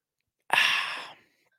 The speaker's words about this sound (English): Let me just take a sip of water and we can see what the chat is saying here.